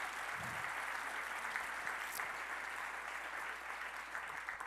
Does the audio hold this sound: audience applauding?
yes